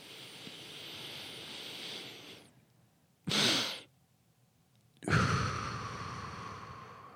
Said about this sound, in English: So notice after you take like a deep breath in, you do like another one little spike. Yeah. You like a big sniff in and then you just fill up all the bronchioles and get all the CO2 out of your lungs. And that release of CO2 drops your stress